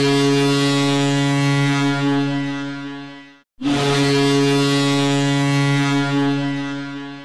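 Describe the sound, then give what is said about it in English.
Two long, loud censor tones with a short break between them, each a low, buzzy, horn-like blast lasting over three seconds. No speech is audible beneath them. “We're beeping all of that.”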